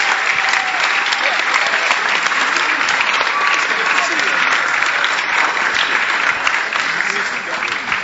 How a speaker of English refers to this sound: Why don't you clap your hands together for Jesus?